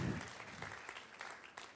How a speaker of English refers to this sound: Let's give the band a big clap. Thank you. Thanks, guys.